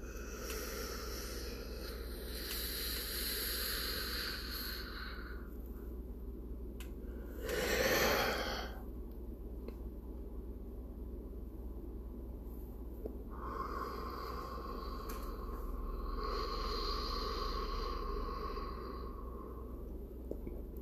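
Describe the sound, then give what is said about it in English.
A person demonstrating deep breathing: a long, airy breath drawn in, held through several seconds of near silence with one brief rushing puff, followed by a long, steady exhale, with no talking. “We're not going to start yet, but I just want you to hear the breathing. So here we go. Deep breath in. Hold. Hold. Hold. Hold. And out.”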